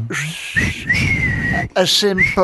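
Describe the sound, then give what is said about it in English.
A loud wolf whistle from a person: a long sustained note followed by a shorter second one, over a low background rumble. “A simple wolf whistle.”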